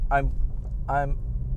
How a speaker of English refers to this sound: I'm out for a little run in the old, good old 911.